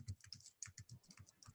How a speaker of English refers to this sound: Furious typing going on.